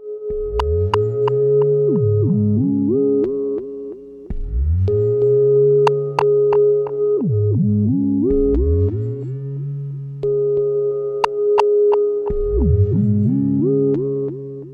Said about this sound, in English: Another extremely understated little track. It's under a minute. It's just one simple ghostly little synth motif and a percussive echo.